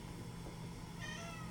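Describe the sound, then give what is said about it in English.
A cat meows once, a drawn-out, slightly whiny cry rising in the second half, clear over a low steady hum, with no talking. “We're not gonna have you meowing through the whole cast.”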